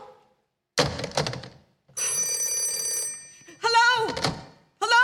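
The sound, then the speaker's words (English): A telephone bell rings once in a steady, bright burst lasting about a second, between a couple of dull knocks and a voice that cuts in right afterward. “For heaven's sake, who is this? Hello? Oh, who's trying to call me?”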